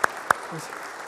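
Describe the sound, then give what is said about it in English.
Two sharp, loud hand claps in quick succession, followed by a soft, scattered patter of fainter clapping from a Methodist audience during a church service. “Clap your hands, all you people. Come on, Methodists. There we go.”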